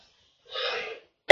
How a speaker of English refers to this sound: Excuse me. Sorry about coughing.